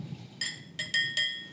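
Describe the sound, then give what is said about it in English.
Four bright glassy clinks in quick, uneven succession from a sealed glass sample vial with a little label, each a short high ringing tap with a brief shimmering decay, against a quiet background. “Yeah, it's a sealed glass vial with a little label on it, and it smells really good.”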